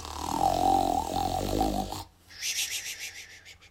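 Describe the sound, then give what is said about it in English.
A giant's huge, exaggerated snore, loud enough to shake the house: a loud, deep, rattling intake lasting about two seconds, then a breathy, fluttering hiss on the exhale, with no talking. “Then the giant began to nod his head and to snore until the house shook.”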